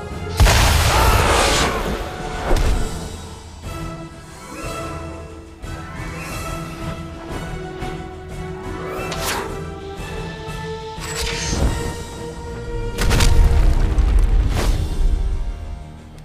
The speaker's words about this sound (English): Thunder of the gods, Flash. Thunder of the gods.